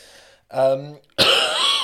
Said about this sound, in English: man, oh, this cough.